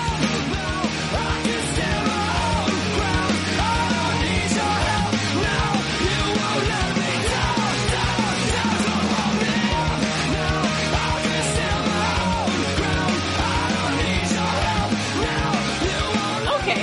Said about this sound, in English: Because it's really good and it has a very slow chorus where it's like, warm yourself by the fire, son, and then it yells at you for 3 minutes, and I think it makes you want to run fast.